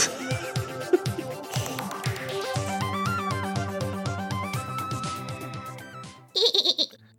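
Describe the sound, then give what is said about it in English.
After several seconds of background music, a voice lets out a short, pulsing, high squeal near the end, meant to imitate a dolphin but coming out like a goat's bleat. “That sounds a little more like a goat.”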